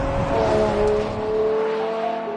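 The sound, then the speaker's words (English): The V12 engine of an 812 GTS sports car revs hard to nearly 9,000 RPM, a loud, sustained howl with a bright harmonic whine that climbs slightly and holds for a couple of seconds, with no voices. “Revving it all the way out to nearly 9,000 RPM.”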